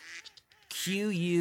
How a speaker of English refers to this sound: And ducks, los patos, ducks, we say they quack.